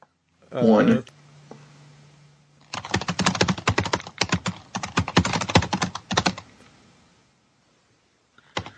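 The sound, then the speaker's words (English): A brief vocal sound, then a few seconds of fast, irregular clacking as someone types on a computer keyboard, the keystrokes bunching into quick bursts before stopping. “We can hear you typing.”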